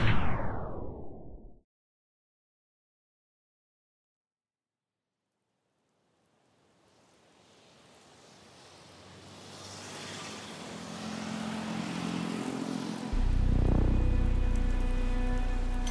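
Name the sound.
rain falling at night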